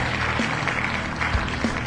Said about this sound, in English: And I did not mean to hit the applause button. Because you shouldn't applaud.